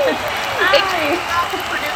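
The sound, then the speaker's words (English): The hosts make their own cheer track as a guest is introduced: a few voices whoop and cheer over a steady wash of clapping-like noise, with rising and falling vocal squeals throughout the two seconds. “How to put a cheer track in. So we do it ourselves.”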